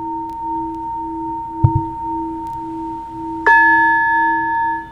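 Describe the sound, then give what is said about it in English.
A meditation timer bell chimes once, a bright struck tone with shimmering overtones that rings out steadily, preceded by a soft sustained hum and a small click, with no talking. “So it's literally just a meditation timer.”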